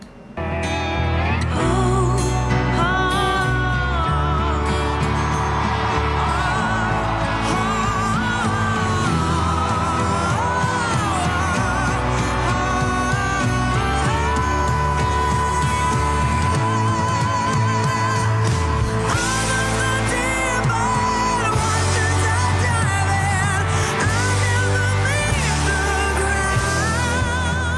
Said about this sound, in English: It's a perfect song. It's a perfect duet.